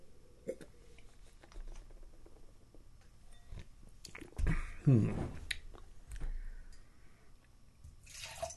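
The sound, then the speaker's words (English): A short splashy pour of beer into a glass, rising in pitch as it fills, lasting about a second amid quiet background noise and a few small clinks. “Sure, let's wrap this up and then pour a little bit more of the old one.”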